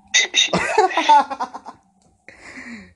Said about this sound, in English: I got coronavirus. I'm coughing.